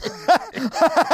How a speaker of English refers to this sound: I caught … like mid cough and I thought he died. I legit was like, oh my God, is he choking on something?